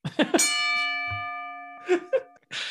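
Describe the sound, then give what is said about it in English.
A bell is pressed and rings out once with a clear, sustained tone that slowly fades over about two seconds, framed by brief voice-like bursts and a short hiss at the end. “And yeah, press your bell and move on.”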